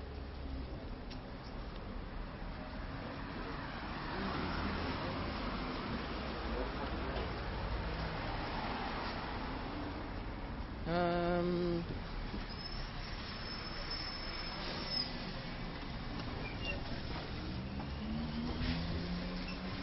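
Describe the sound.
Steady city street traffic rumbles throughout, a dense wash of engine and road noise, with a short tonal beep or horn cutting through midway and faint voices blending into the background.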